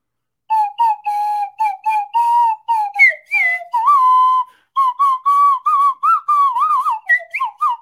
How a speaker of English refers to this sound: While you're doing that, I would like to let's do a little musical interlude. You do you. Okay. We're going to do Jingle Bells.